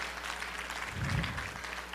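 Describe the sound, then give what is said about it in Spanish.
An audience applauds for God at a night church service, a dense steady wash of many hands clapping at once, sustained without pause and moderately loud throughout. “Regálale un aplauso a Dios en esta noche.”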